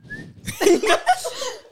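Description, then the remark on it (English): A short, thin whistled note, then a breathy, airy run of whistled tones, uneven and partly hissy, as a person whistles a short four-note tune. “What should I whistle?”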